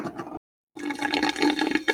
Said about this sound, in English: Who has a fucking drink and is slurping it on mic? That slurp's going in the episode.